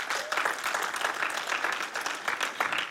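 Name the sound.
audience clapping in praise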